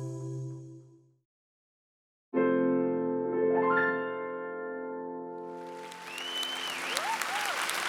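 A crowd's applause swells in the second half in the crowded East Room of the White House in Washington, D.C., as Melinda French Gates is named; a dense rush of clapping over a sustained, held musical tone that began moments earlier after a brief silence.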